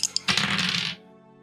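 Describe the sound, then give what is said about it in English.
Two quick clicks, then a bright rattling clatter for under a second as dice are rolled across a hard surface for a power roll, landing on 64, before it stops and leaves only a faint background hum. “Dice don't fail me now.”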